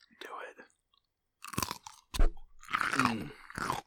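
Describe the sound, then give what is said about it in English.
Loud crunching and wet chewing of a crisp pickle, several bites in quick succession with brief pauses. “And I'm going to warn you right now, if you don't like eating sounds, you're not going to want to listen to this. Because right now, we're eating pickles.”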